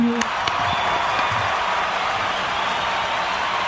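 Steady applause, a dense wash of many hands clapping at an even loudness for a few seconds, with a couple of sharper claps near the start, celebrating someone starting initial operating experience at a first Part 121 airline job.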